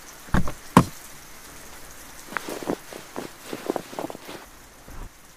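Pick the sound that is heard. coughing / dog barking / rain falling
rain falling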